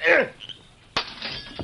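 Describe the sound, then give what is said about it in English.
A brief shout comes first, then a rock is heaved through the glass window of a cabin with a sharp crash, followed by a second of bright, tinkling shards scattering. “I'll heave it through the window and talk to that masked man and Jack Barrow.”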